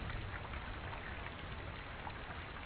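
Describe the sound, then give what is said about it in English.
Steady rain falling during a week of repeated storms, a dense, even hiss with faint scattered patters throughout, continuous with no pauses or voices. “Rain, rain, rain. That's all it's been doing for the past week.”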